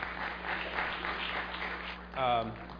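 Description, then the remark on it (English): An audience claps in a steady, dense patter of many hands, moderately loud, for about two seconds before a single voice starts speaking as the clapping fades. “But those who are clapping, don't think I'm going to give you potato chips, because I didn't bring those.”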